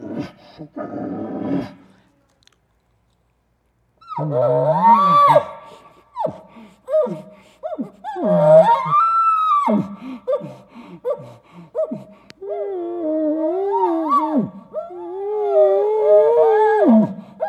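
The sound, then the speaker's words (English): A man's voice imitates an excited bull near cows in heat, tasting the air: sharp panting gasps and breathy snorts mixed with drawn-out, rising moans and groans that come in uneven bursts after a short quiet pause. “And so as I let him, this bull know, now I'm tasting the air. I'm not only smelling, I'm tasting. I'm showing the excitement. I'm panting.”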